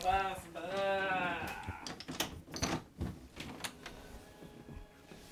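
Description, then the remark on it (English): A door creaks open with a drawn-out, wavering squeal, followed by several sharp knocks and clunks of the latch and frame, fairly loud. “I'll open the door and see where this goes.”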